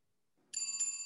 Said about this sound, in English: You're correct. It's Jingle Bells.